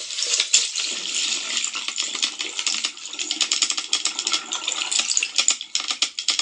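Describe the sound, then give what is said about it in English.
Dolphin clicks and whistles recorded underwater: a dense, rapid crackle of sharp high clicks, irregular like scattered tapping, with some whistles and bursts speeding up toward the end, and no voices. “And now, in contrast, this is going to be maybe a little bit muddied because it's underwater sounds, but this is a dolphin click and whistle.”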